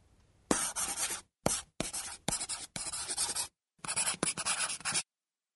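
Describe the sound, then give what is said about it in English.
A pencil scratches across paper as a woman writes, in a run of brisk strokes, some short and some longer, separated by brief pauses, with no voices. “She picked up the pencil again.”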